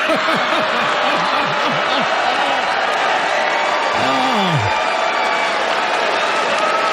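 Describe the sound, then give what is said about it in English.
A loud, lively crowd at CPAC cheers and whoops steadily during President Trump's speech, with shouted voices rising and falling in pitch above a dense, continuous roar of many people. “That's a lively crowd there, and of course a lively speech.”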